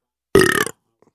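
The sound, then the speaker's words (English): A single loud burp lasting under half a second, deep and raspy with a rough, gurgling texture, followed by silence. “Jesus Christ, you burp a lot.”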